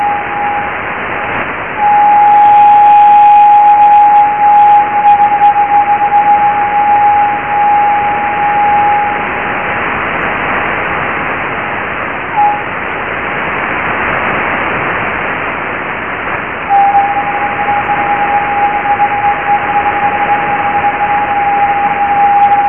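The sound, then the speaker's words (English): Steady radio hiss carries long, thin high-pitched tones of a transmission echoing back off Leonid meteor trails, recorded with an aerial at Jodrell, one running for several seconds early on, a brief blip midway, and another sustained tone near the end. “you'll hear high-pitched noises in this recording that are basically the echo of this transmission coming back off the meteor trails.”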